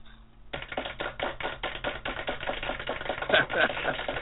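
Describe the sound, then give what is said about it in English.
A canned applause sound effect, a show's regular sound bite on Blog Talk, bursts in after a brief pause as a guest is welcomed: dense, rapid crackling claps with a thin, sizzling texture, almost like food frying, holding steady for a few seconds. “That's our famous sound bite that is supposed to be claps, but for some reason sounds like, you know, barbecue chicken for some reason cooking.”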